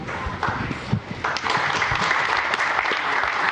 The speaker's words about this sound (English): So that you guys would applaud for that, it really warms my heart because I worked my hiney off on it.